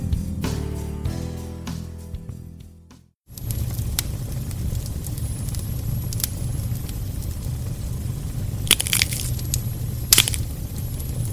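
A short musical phrase fades out, then a campfire crackles steadily with low rumbling noise and a few sharper pops and snaps standing out now and then, fairly loud, with no voices.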